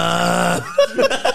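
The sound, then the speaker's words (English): A voice imitates a loud, rasping snore in one long, throaty buzz lasting about half a second, followed by a few short, softer vocal bursts. “No, she's like, the guy's snoring?”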